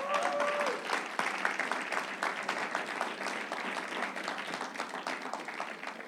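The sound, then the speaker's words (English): An audience breaks into sustained applause, giving Jesus Christ a hand clap: a dense wash of many hands clapping at a steady loudness for several seconds, with faint cheering tones rising briefly near the start. “Let's give Jesus Christ a hand clap.”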